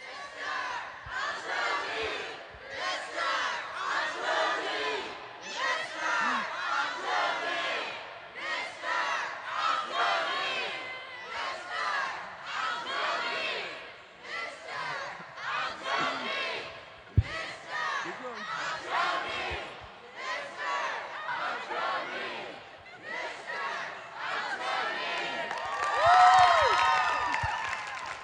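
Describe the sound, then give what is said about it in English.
A large youth camp crowd chants loudly in a steady, repeated rhythm, the two halves of the room alternating short bursts of massed voices to call out a man's name, swelling louder toward the end with some cheering mixed in. “So if this side of the room could do Mr. and this side do Altrogi until he comes out”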